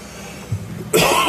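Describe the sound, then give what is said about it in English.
A sharp, harsh cough bursts out after a moment of low murmuring, loud and breathy, with a throaty rasp as it cuts off. “I mean, be coughing so much, but this has got me.”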